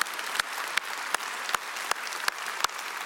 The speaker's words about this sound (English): I mean, if he comforts us in all of our afflictions, if he brings encouragement, then we need to all give him a round of applause. Give a moment just to give applause to the Lord in his presence.